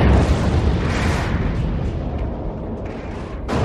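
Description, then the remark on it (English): A massive science fiction movie explosion roars continuously, a dense, deep rumble with crackling debris that slowly thins out, loud, with no voices. “Now, we start as the music ends, the music drops out, there's a beat of silence, and then there is one of the biggest explosions I had ever seen in any science fiction movie up to this point.”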